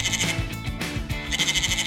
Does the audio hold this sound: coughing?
no